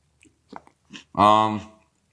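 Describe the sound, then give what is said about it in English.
A few soft, wet chewing sounds from a man eating, followed by a longer voiced hum or vocal sound as he keeps eating. “I can hear him chewing.”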